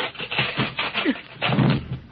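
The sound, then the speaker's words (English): Heavy blows from the Tin Man's axe strike a wooden castle door, chopping it down in an uneven series of loud, crunching thuds, with splintering wood cracking between the hits. No voices are heard. “Tin Man, your axe chopped down the door.”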